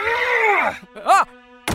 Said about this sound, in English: Warden slams Kaelin against the wall, knocking him unconscious. The young man slides down the wall and onto the floor.